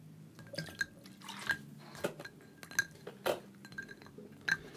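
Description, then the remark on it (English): Field Notes vodka is poured into a glass for a cocktail, with soft splashing drips and several bright, ringing glass clinks spread unevenly over a few seconds, fairly quiet, with no talking. “Fly that hummingbird right over here. Yeah, buddy. Well, land into my glass.”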